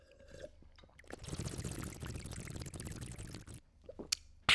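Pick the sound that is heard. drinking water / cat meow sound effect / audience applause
drinking water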